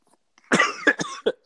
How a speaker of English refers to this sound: It only took me till the end of the pod to start coughing, which if you listen to the pod is like a regular occurrence.